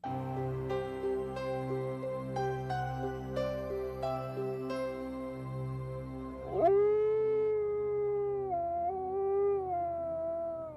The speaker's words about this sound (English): The howl of a lone wolf is a haunting sound that can fill your imagination with fear. And it is fear of that wild animal that has sparked so many legends.